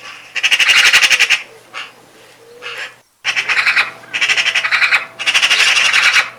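Loud, harsh magpie chatter arrives in several rattling bursts of rapid pulses separated by short quieter gaps, over a faint steady low hum, with no talking.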